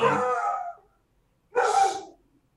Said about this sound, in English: And obviously, dogs.